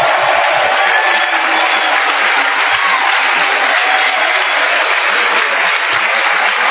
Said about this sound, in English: Clap your hands for Lighthouse Chapel International.